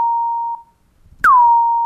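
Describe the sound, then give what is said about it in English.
A synthesized kick drum with its pitch raised and its amplitude decay turned way up, struck twice, each hit ringing out as a long, steady tone; the second opens with a sharp noisy click and a quick downward pitch swoop. “I'm going to just change our kick drum into a violin. So first of all, I'm going to raise the pitch.”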